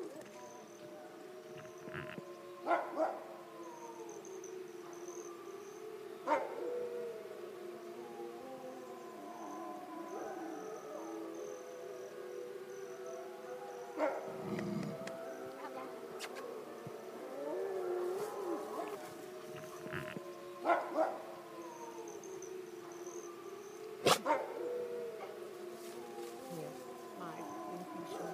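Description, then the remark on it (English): A pack of canines howls together after the weather has cleared up a little, in a long, overlapping chorus of rising and falling tones, steady and moderately loud throughout, with a few sharp knocks and clicks scattered in between. “How often do they howl as a group, or do they howl individually?”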